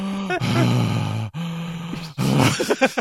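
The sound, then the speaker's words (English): A voice imitates heavy, raspy breathing like in a POV shot from an 80s slasher movie, a few loud groaning breaths with brief pauses between them, and no other sound around it. “All you hear is like heavy breathing and like blurry tunnel vision.”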